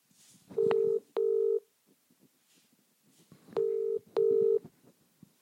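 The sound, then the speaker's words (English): Telephone line tones sound as two pairs of loud, steady electronic beeps, each pair a quick double pulse, separated by a pause over faint background noise, with no one speaking, as a call is placed to the Cirencester Town football club manager. “we're going to get Cirencester Town manager Craig Robinson on the phone”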